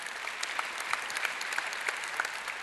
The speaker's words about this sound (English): Yeah, let's cheer for that. That's awesome.